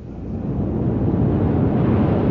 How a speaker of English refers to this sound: It's the tide. It comes in faster than an express train. Is it always like this? Twice a day.